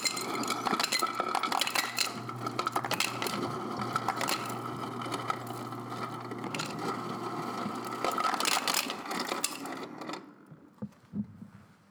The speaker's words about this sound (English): For the sake of time, we've poured everything in our little cocktail shaker except for the ice. So we need to put some ice in.